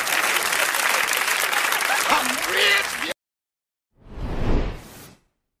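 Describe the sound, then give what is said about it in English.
A crowd claps in a dense, steady burst of applause for about three seconds, then it cuts to silence before a short whooshing swell rises and fades. “Let's all clap for help.”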